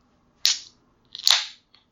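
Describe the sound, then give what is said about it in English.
A drink can cracks open: a sharp metallic snap followed by a bright fizzing hiss, then a second crack and longer hiss, ending with a faint click. No talking. “Yeah, I'm going to open it, my can.”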